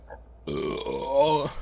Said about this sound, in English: it's like a thing where I got a burp.